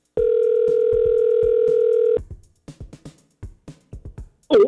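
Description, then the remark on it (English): A telephone call ringing out to Tom Skilling's cell phone before he goes on the 4 o'clock news: one steady, buzzing ringback tone lasting about two seconds, then the line clicks and a faint, tinny voice talks over the phone. “but now Tom said, give him a call before he goes on the 4 o'clock news.”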